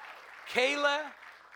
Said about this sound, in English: Come on down. Yeah, give them a good hand clap.